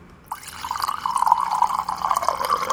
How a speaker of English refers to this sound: Let's just have the sound of pouring cold coffee. That'll help. It's not into a glass, though.